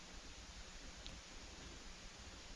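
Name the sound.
background hiss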